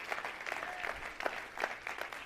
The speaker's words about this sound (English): Somebody clap your hands, say amen.